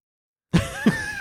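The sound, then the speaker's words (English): Two short, low grunts from a huge pig named Francis, fairly loud, the second following about a third of a second after the first, with a faint rumbling tail and no talking. “And sometimes we're all having conversations with this pig where I'm just like, hey, are you tired?”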